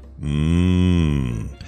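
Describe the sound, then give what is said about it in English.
A single long, low moo from a dairy cow at a farm near Moscow, Russia, loud, holding a steady droning pitch for over a second before sagging and cutting off. No talking around it. “Here, the cows supposedly roam around fitted with VR headsets.”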